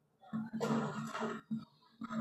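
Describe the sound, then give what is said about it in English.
A person coughs in a few harsh, raspy bursts: one long drawn-out hack, then a short cough and another starting at the end, fairly loud. “I told you I started touching on me and coughing on me.”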